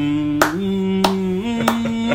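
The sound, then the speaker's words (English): Sharp hand claps in a music beat land at a steady, unhurried pace, about four of them, over a sustained sampled choir chord that shifts pitch between claps. Nobody speaks. “It was clapping like.”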